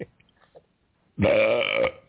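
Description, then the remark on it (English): A single loud, drawn-out belch erupts after a quiet moment, rumbling and rattling for nearly a second before cutting off abruptly. “Yeah, but that wasn't just that was a cannon belch.”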